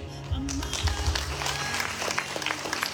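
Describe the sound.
An audience breaks into steady applause honoring a community member receiving a Good Works Eagles Award, a dense, continuous patter of many hands clapping at a moderate level, with a low hum and faint voices underneath.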